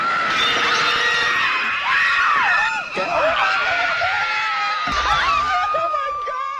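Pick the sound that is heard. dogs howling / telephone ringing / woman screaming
woman screaming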